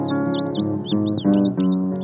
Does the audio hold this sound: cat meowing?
no